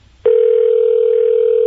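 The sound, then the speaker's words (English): A steady telephone dial tone, as a call is placed to wrestler Kurt Angle, starts abruptly after a brief quiet moment and holds at an even, loud level without interruption, with no voices present. “That'd be a fun phone call to get.”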